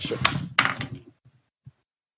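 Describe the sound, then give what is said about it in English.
A door swings shut with a solid wooden thunk, a short rattling burst of impacts over about a second, followed by a couple of faint soft knocks as it settles. Fairly loud, no talking. “I'll have to close the door.”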